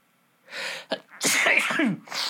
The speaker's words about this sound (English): That sounded like I had a heart attack when I sneezed.